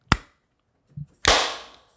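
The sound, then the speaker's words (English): A single sharp hand clap, made to sync a recording, rings out, followed by a soft low thump and then a second loud, crackling burst that fades away over about half a second. No one speaks. “Clap.”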